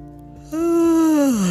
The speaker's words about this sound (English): I feel like I have to yawn. I'm gonna yawn.